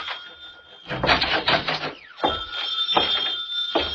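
A telephone rings in two steady, high-pitched bursts separated by a short pause, with thumping and rustling movement underneath.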